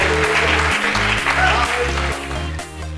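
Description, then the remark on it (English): An audience claps its hands unto God in a dense, continuous wash of applause, mixed with loud instrumental music whose deep bass notes shift every half second or so. “Come on, clap your hands unto Him today.”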